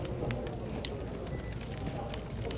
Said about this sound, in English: So I don't know if you noticed, I moved us from the coffee shop to the tavern. I appreciate that. I wanted a little more ambiance. You know me, I always love a fireplace.